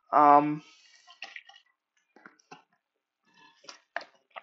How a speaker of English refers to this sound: Oh, crap. Spill my water.